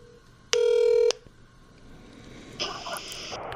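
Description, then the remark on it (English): A phone being dialed to call a woman who has just left: one loud, steady electronic keypad tone lasting about half a second, then after a pause a softer, higher-pitched buzzy tone. No one speaks. “It actually would be great if I could get her to come in here and talk about it right now, but I think I heard her car pull away. Let me just call her.”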